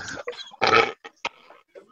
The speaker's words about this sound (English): These burps are getting worse.